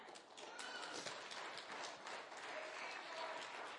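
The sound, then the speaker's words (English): A crowd of people clapping their hands together, a dense, steady wash of overlapping claps that holds at an even, fairly loud level throughout. “Come on, clap your hands.”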